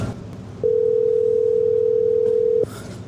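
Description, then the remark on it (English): A steady, unbroken telephone dial tone hums for about two seconds as a phone call is placed, starting and stopping abruptly over a faint background murmur, with no one speaking. “He's going to call on our phone.”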